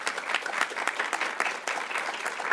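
Steady applause from an audience welcoming Congressman Jim Jordan, a dense wash of many hands clapping with no pauses, holding at an even level throughout.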